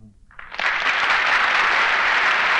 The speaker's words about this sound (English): You know, not every Tom, Dick, and Harry rates applause like that.